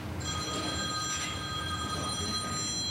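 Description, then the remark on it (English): An old-fashioned telephone bell rings continuously with a bright, metallic trill over a low background rumble, fairly loud, with no one speaking. “I feel like we've gone in the past with the phone.”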